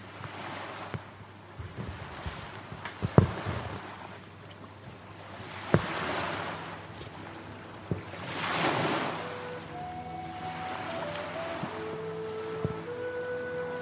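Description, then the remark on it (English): Thread drawn through heavy canvas while stitching, in slow, breathy rasping swishes a few seconds apart, like gentle surf, with occasional sharp clicks and a faint steady hum behind; no one speaks. “And I love the sound of the tread going through the canvas.”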